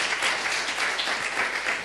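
A church audience applauds steadily to welcome a guest speaker, many hands clapping in a dense, even wash of sound that holds at a constant level throughout.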